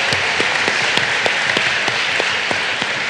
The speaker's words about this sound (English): But before that, I do want to explain, give a shout or a clap if you are a gamer, you consider yourself a video gamer.